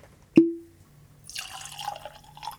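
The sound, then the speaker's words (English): A sharp glassy clink rings out and fades, followed by a steady splashing trickle of a 43% ABV (86 proof) Wild Turkey bourbon being poured into a glass, with no talking. “So I think it's about time to get this baby poured.”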